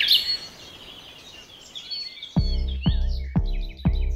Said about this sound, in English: Oh, if everybody could just look at the birds, it would be a better place. Stop and listen to the birds, people.